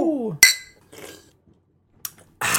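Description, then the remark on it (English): A voice trails off, then beer glasses meet in one sharp, ringing clink. Soft drinking noises follow in short bursts, ending with a louder breathy rush. “And before we do that, let's give the magic word and down our beers.”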